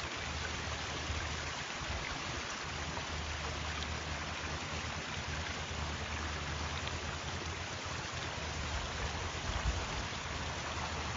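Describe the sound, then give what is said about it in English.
Steady rain falls continuously, a dense hiss of drops with a low rumble underneath, constant throughout with no voices, heard while out on a walk on a bridge over a river. “Yeah, and it's definitely raining.”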